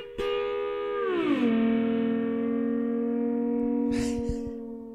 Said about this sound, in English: How do you do your passing car noises when trucks are going by? Yeah, yeah. So I'm utilizing my volume pedal.